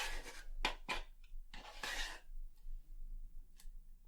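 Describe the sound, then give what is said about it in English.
A spoon scrapes and taps against a container in a handful of short, irregular bursts as ingredients are spooned into a blender, with a brief rasping stretch midway, followed by a quieter pause with one last light clink. “Spooning it in.”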